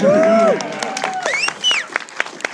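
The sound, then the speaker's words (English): A small audience cheers with rising whoops and shouts while scattered applause claps along, lively, lasting a few seconds. “Well, his mom's here, so cheer for”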